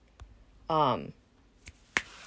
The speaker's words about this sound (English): So if you guys hear me snapping my fingers, it's because of my cat. She likes to be brushed and on her schedule only.